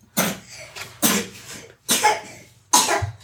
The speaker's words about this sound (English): Every time I start talking, she starts coughing.